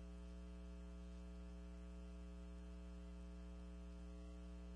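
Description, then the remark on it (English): A steady electrical hum with a buzzy stack of tones runs throughout, layered over a faint bed of hissing static on a call connection. It stays constant and fairly quiet, with no voices. “Chris says he hears nothing but static.”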